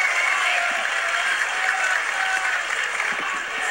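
A big UK wrestling crowd roars and applauds nonstop, a dense, loud wash of cheering and clapping that holds steady for the whole few seconds with no voices standing out.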